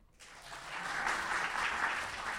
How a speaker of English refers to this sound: Tepid applause, but I get it.